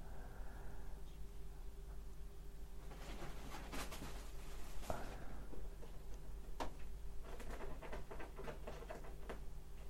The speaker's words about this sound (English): Can you hear him? He's now scratching at the bathroom door for no reason.